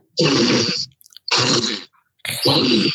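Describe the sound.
A voice imitates a cat's hiss three times, each a loud, breathy, harsh burst lasting about half a second with brief silent gaps between, the last one slightly longer and sharper.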